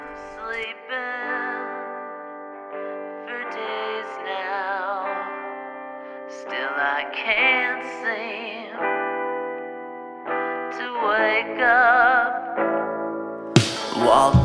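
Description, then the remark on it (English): A song plays with layered, sustained synth-like tones and warbling, heavily processed melodic lines. It stays at a steady, moderate level and ends in a sudden bright burst of noise. “Here's a song.”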